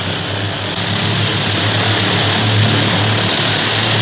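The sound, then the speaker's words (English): A propeller airplane engine roars steadily and loudly as the plane climbs steeply toward a low overcast, a dense, unbroken drone with a low throbbing hum underneath, holding constant throughout with no voices. “Hey, you don't have to go straight up. Who's flying this ship?”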